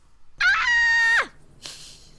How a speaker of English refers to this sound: She's, like, asleep, screaming. She woke up screaming.